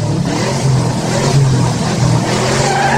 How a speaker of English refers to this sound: Uh-oh. Has just hit the brakes.